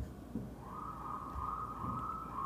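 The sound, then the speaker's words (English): A vehicle siren wails steadily as the vehicle goes by, a sustained tone rising in over a low rumble of city traffic, with no one speaking. “And yes, another siren going by.”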